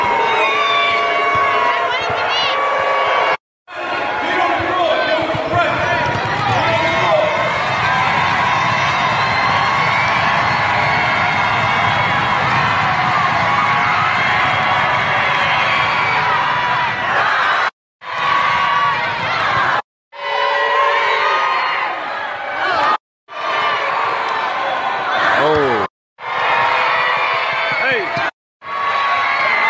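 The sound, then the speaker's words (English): A crowd of children at a basketball camp shouts and cheers loudly and continuously as a player takes shot after shot, with whoops and groans of disappointment at missed shots rising and falling, broken by several abrupt silent cuts and occasional thuds like a ball bouncing. “Miss one shot, and you can hear the disappointment in the kids' voices as he just trains shot after shot.”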